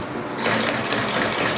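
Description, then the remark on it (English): A specially manufactured sewing machine stitches a broken suitcase zipper in a small suitcase repair shop in Taiwan, running in a fast, steady mechanical chatter, fairly loud, starting after a brief quieter moment and continuing without pause. “A broken zipper is a big job. For that, he'll need a specially manufactured sewing machine.”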